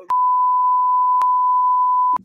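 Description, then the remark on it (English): A steady, loud censor bleep tone held for about two seconds, with small clicks where it starts, briefly mid-way, and where it cuts off. No talking is audible. “I can't wait to beep all that out so no one knows what the fuck we're talking about.”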